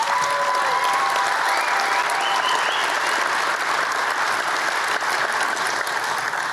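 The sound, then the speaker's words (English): A large audience applauds loudly and steadily, a dense wash of clapping that holds at full strength for several seconds without pause. “And those of you who are going to church tomorrow and didn't applaud, pray for me.”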